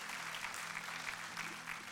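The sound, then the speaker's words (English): An audience claps steadily for a couple of seconds, a dense, even patter of many hands with no voices standing out above it. “What we want to, you can clap for that for sure.”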